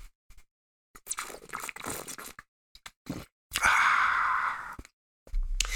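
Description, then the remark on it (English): Someone takes a few short slurping sips of Topo Chico sparkling mineral water and swallows, then a sustained fizzy hiss lasting about a second, ending in a low thud. No one speaks. “I'm going to take a sip of my Topo Chico here.”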